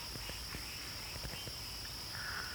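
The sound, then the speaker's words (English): Crickets chirp steadily by a pond of about 10 acres, in a high, continuous trill, with scattered soft clicks and rustles beneath and a brief brighter buzz near the end. The night ambience is quiet. “But also birds and frogs and crickets.”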